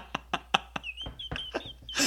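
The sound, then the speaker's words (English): A table knocks four times in a quick, even rhythm, then lets out a drawn-out, squeaky creak mixed with a few softer thumps, all fairly loud with no one talking. “Can you guys hear my table creaking on all of these recordings?”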